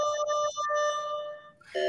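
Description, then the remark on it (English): A school class-change signal sounds loudly on its own: a steady, bright electronic tone with a couple of quick breaks, shifting to a different pitch just before it ends. “You know, we're dealing with a school here at so we will get occasional buzzing and things like that as it's time to change classes.”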